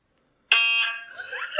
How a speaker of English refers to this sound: So we can pull it up to our phone, and I'm going to play on Spotify. They have MRI noises on a playlist.